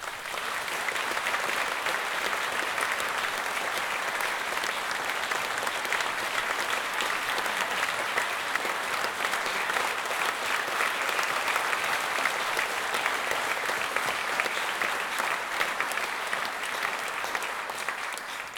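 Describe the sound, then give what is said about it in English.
A large audience gives one more round of applause for John Sampson and Carol Ann Duffy, a dense wash of many hands clapping at an even, sustained level for nearly twenty seconds without pause or speech. “Just leaves me to say one more round of applause for John Sampson and Carol Ann Duffy.”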